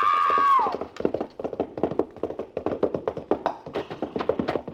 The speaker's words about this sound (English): The horse stumbled over that lower bar and threw her.